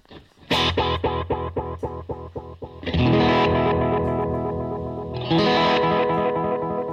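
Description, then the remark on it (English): Distorted electric guitar through a delay pedal: a quick chord stab echoes in a rapid, evenly spaced train of repeats, then two loud sustained chords ring out with a long trailing wash. No talking. “Awesome delay there.”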